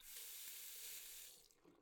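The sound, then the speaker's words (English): A tap runs steadily into a glass, a bright, broad hiss of flowing water that tapers off near the end as the stream is shut off. Fairly quiet, with no talking. “But could I at least trouble you for a glass of water?”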